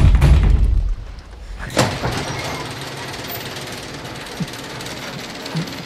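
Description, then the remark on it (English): A heavy garage door opens after someone accidentally sits on its button. It grinds and rumbles, with a loud low mechanical drone at first, a sharp clunk, then a steady rattling hum as it keeps moving. No one speaks. “The garage door's open.”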